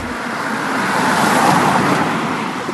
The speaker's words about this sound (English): we are stood in the centre of Pitstone as cars go by, and straight in front of us here is the speed tracking device.